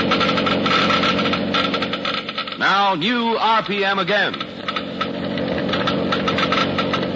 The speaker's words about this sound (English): Listen now as the Geiger counters click off the difference. First, the low wear rate of new RPM. Now, the much faster wear rate of the conventional oil.